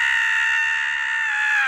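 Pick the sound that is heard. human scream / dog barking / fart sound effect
human scream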